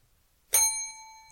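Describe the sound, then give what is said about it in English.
A single bright bell strike rings out clearly, its metallic tone sustaining and slowly fading over about a second, with no talking around it. “That was a 1.5 bell, just so you know.”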